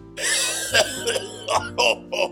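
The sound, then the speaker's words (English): A person coughs several times in quick, uneven bursts, with a rough, throaty edge and short pauses between each cough. “I started coughing.”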